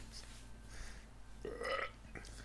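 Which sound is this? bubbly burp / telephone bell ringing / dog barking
bubbly burp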